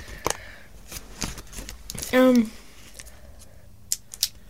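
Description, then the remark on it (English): Irregular crackling and rustling as wax paper is smoothed out, with scattered sharp crinkles and a brief voiced sound partway through. “Uncrinkle the wax paper.”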